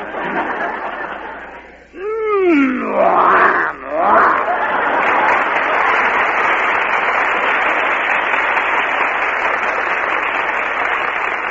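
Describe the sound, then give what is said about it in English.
A man's voice imitates a lion's growl in a couple of rising and falling roars, quickly swallowed by loud, sustained applause from an audience. “You must growl like the MGM lion.”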